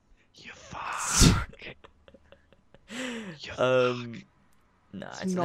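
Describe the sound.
Heavy breathing blasts straight into a microphone, with harsh puffs of air in the first seconds, followed by short stretches of a voice talking.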